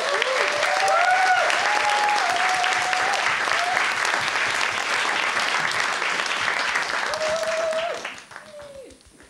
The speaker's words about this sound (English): Now let's give a massive round of applause